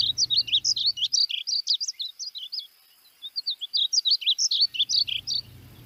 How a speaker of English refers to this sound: Well, not big, they're kind of small, but they act like they're big, and like they sing, and the song is very melodious. That's also my favorite bird song.